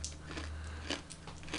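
Crisp crunching and chewing of pistachios right up against the microphone, with a few sharper bites standing out over a low steady hum.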